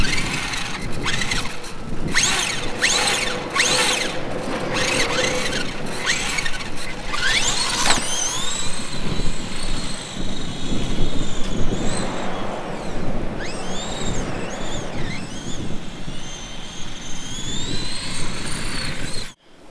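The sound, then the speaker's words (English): A small remote-controlled toy car, controlled with a Wii remote through a slightly modified RC transmitter linked to a Mac by an Arduino board, drives about outdoors, its electric motor whining higher and lower as it speeds up and slows, over steady wind and rushing background noise. “In order to do this, we made the smallest possible hack to our RC car transmitter.”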